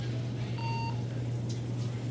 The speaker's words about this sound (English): I'm not sure what that weird ticking noise is in the background, but anyway... That's the little heart monitor. No. It's in the recording. I'm not sure what it is.